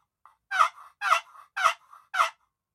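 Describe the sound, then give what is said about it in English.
A walnut wooden turkey call gives four raspy, evenly spaced jake gobbler yelps in a steady rhythm, imitating a young male turkey. Each note is coarse and loud, with no talking. “And actually both, it'll give you a pretty decent Jake gobbler yell.”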